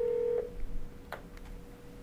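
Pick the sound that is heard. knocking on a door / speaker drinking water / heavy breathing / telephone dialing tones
telephone dialing tones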